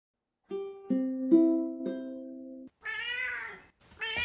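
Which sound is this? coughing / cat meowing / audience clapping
cat meowing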